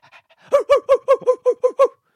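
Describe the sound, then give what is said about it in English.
A person imitates a dog's panting with about eight quick, rhythmic, breathy huffs, fairly loud, preceded by a few softer breaths, with no talking. “The desert dog.”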